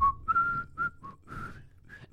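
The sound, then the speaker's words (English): A man whistles a short melodic tune at night, a series of clear, bright notes that rise and fall in quick phrases with brief gaps between them. “He's whistling. He's doing the Columbo whistle.”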